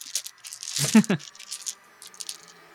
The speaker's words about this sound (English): Tell me how I'm emptying out my entire dice bag and I see no d10s. What's going on here?